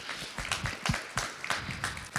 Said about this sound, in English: So can we give a round of applause for him? Where'd he go?